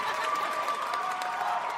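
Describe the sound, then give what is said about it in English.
An audience applauds as Cecile Richards, former president of Planned Parenthood, is welcomed, with scattered cheers and whoops rising over the dense clapping, a continuous, even wash of sound lasting just under two seconds. “I don't get that type of applause.”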